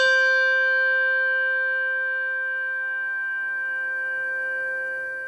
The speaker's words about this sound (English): Here, I'll play them again. Schulmerich bell with tang.